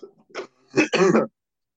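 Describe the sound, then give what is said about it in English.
A person clears their throat and coughs in a few short, rough bursts, fairly loud, with the last bursts running together before silence. “These are I cough and then I'm okay.”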